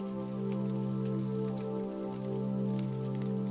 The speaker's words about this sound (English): As she continues on, the light drizzle turns to rain. The drops fall heavily on her umbrella now. Thankfully, it's wide enough to keep her dry.